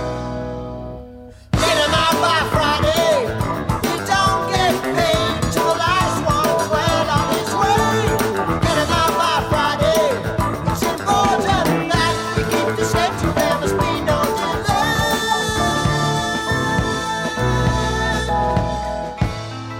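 A loud, dense rock song with a driving bass guitar line pulsing under full-band drums and guitars, kicking in after a brief quiet start and continuing steadily throughout.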